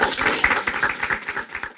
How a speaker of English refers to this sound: All right, let's celebrate our new people in the room. So first of all, if you this is your first meeting, stand up. We want to celebrate you. Clap, clap, clap, clap, clap.